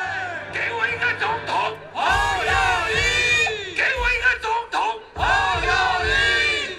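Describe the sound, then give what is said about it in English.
A large crowd at a Kuomintang (KMT) nationalist rally chants presidential candidate Ho Yo Yi's name in loud, rhythmic bursts of three syllables, repeated again and again with brief gaps and shouting between the chants, as a man on stage calls "Give me a president." “You can hear the guy on stage, he's saying, "Give me a president," and the crowd is saying, "Ho Yo Yi," which is the name of the presidential candidate. He's basically chanting that over and over again.”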